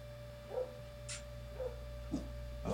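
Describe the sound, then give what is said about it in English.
A dog in a forest barks faintly at a black creature, in short, scattered yips, about five of them, spaced irregularly over a steady low electrical hum, with no one talking. “barking at the dog barking”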